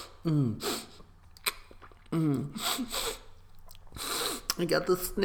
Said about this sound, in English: I got the sniffles.